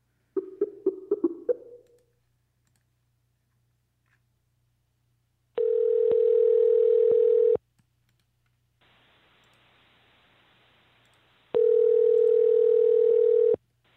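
A few quick dialing beeps, then an outgoing call's ringback: two long, steady, buzzy tones, each about two seconds, separated by a stretch of quiet line hiss. No one speaks.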